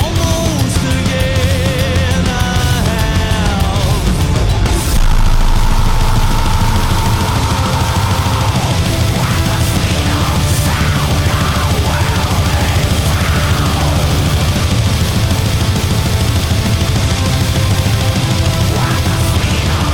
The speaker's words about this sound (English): And he actually sings most of the song, although like there are some screaming parts in it.